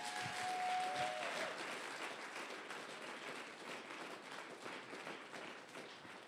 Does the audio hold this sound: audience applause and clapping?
yes